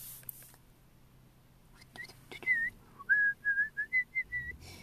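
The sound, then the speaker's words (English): A person whistles a short run of about seven clear, high notes, one swooping upward and the rest short, steady tones in a quick, halting rhythm, with no talking. “Yes, I whistle.”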